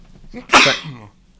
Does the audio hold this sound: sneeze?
yes